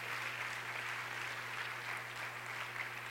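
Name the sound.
audience clapping hands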